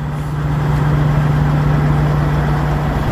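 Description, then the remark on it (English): A steady, loud low-pitched engine hum drones without pause from idling trucks, a bus and generators of a convoy by the parliament in Ottawa, with a strong constant low tone and no voices. “Oh, you got trucks. Generators. Check in the generator. That's a bus right there. You got generators.”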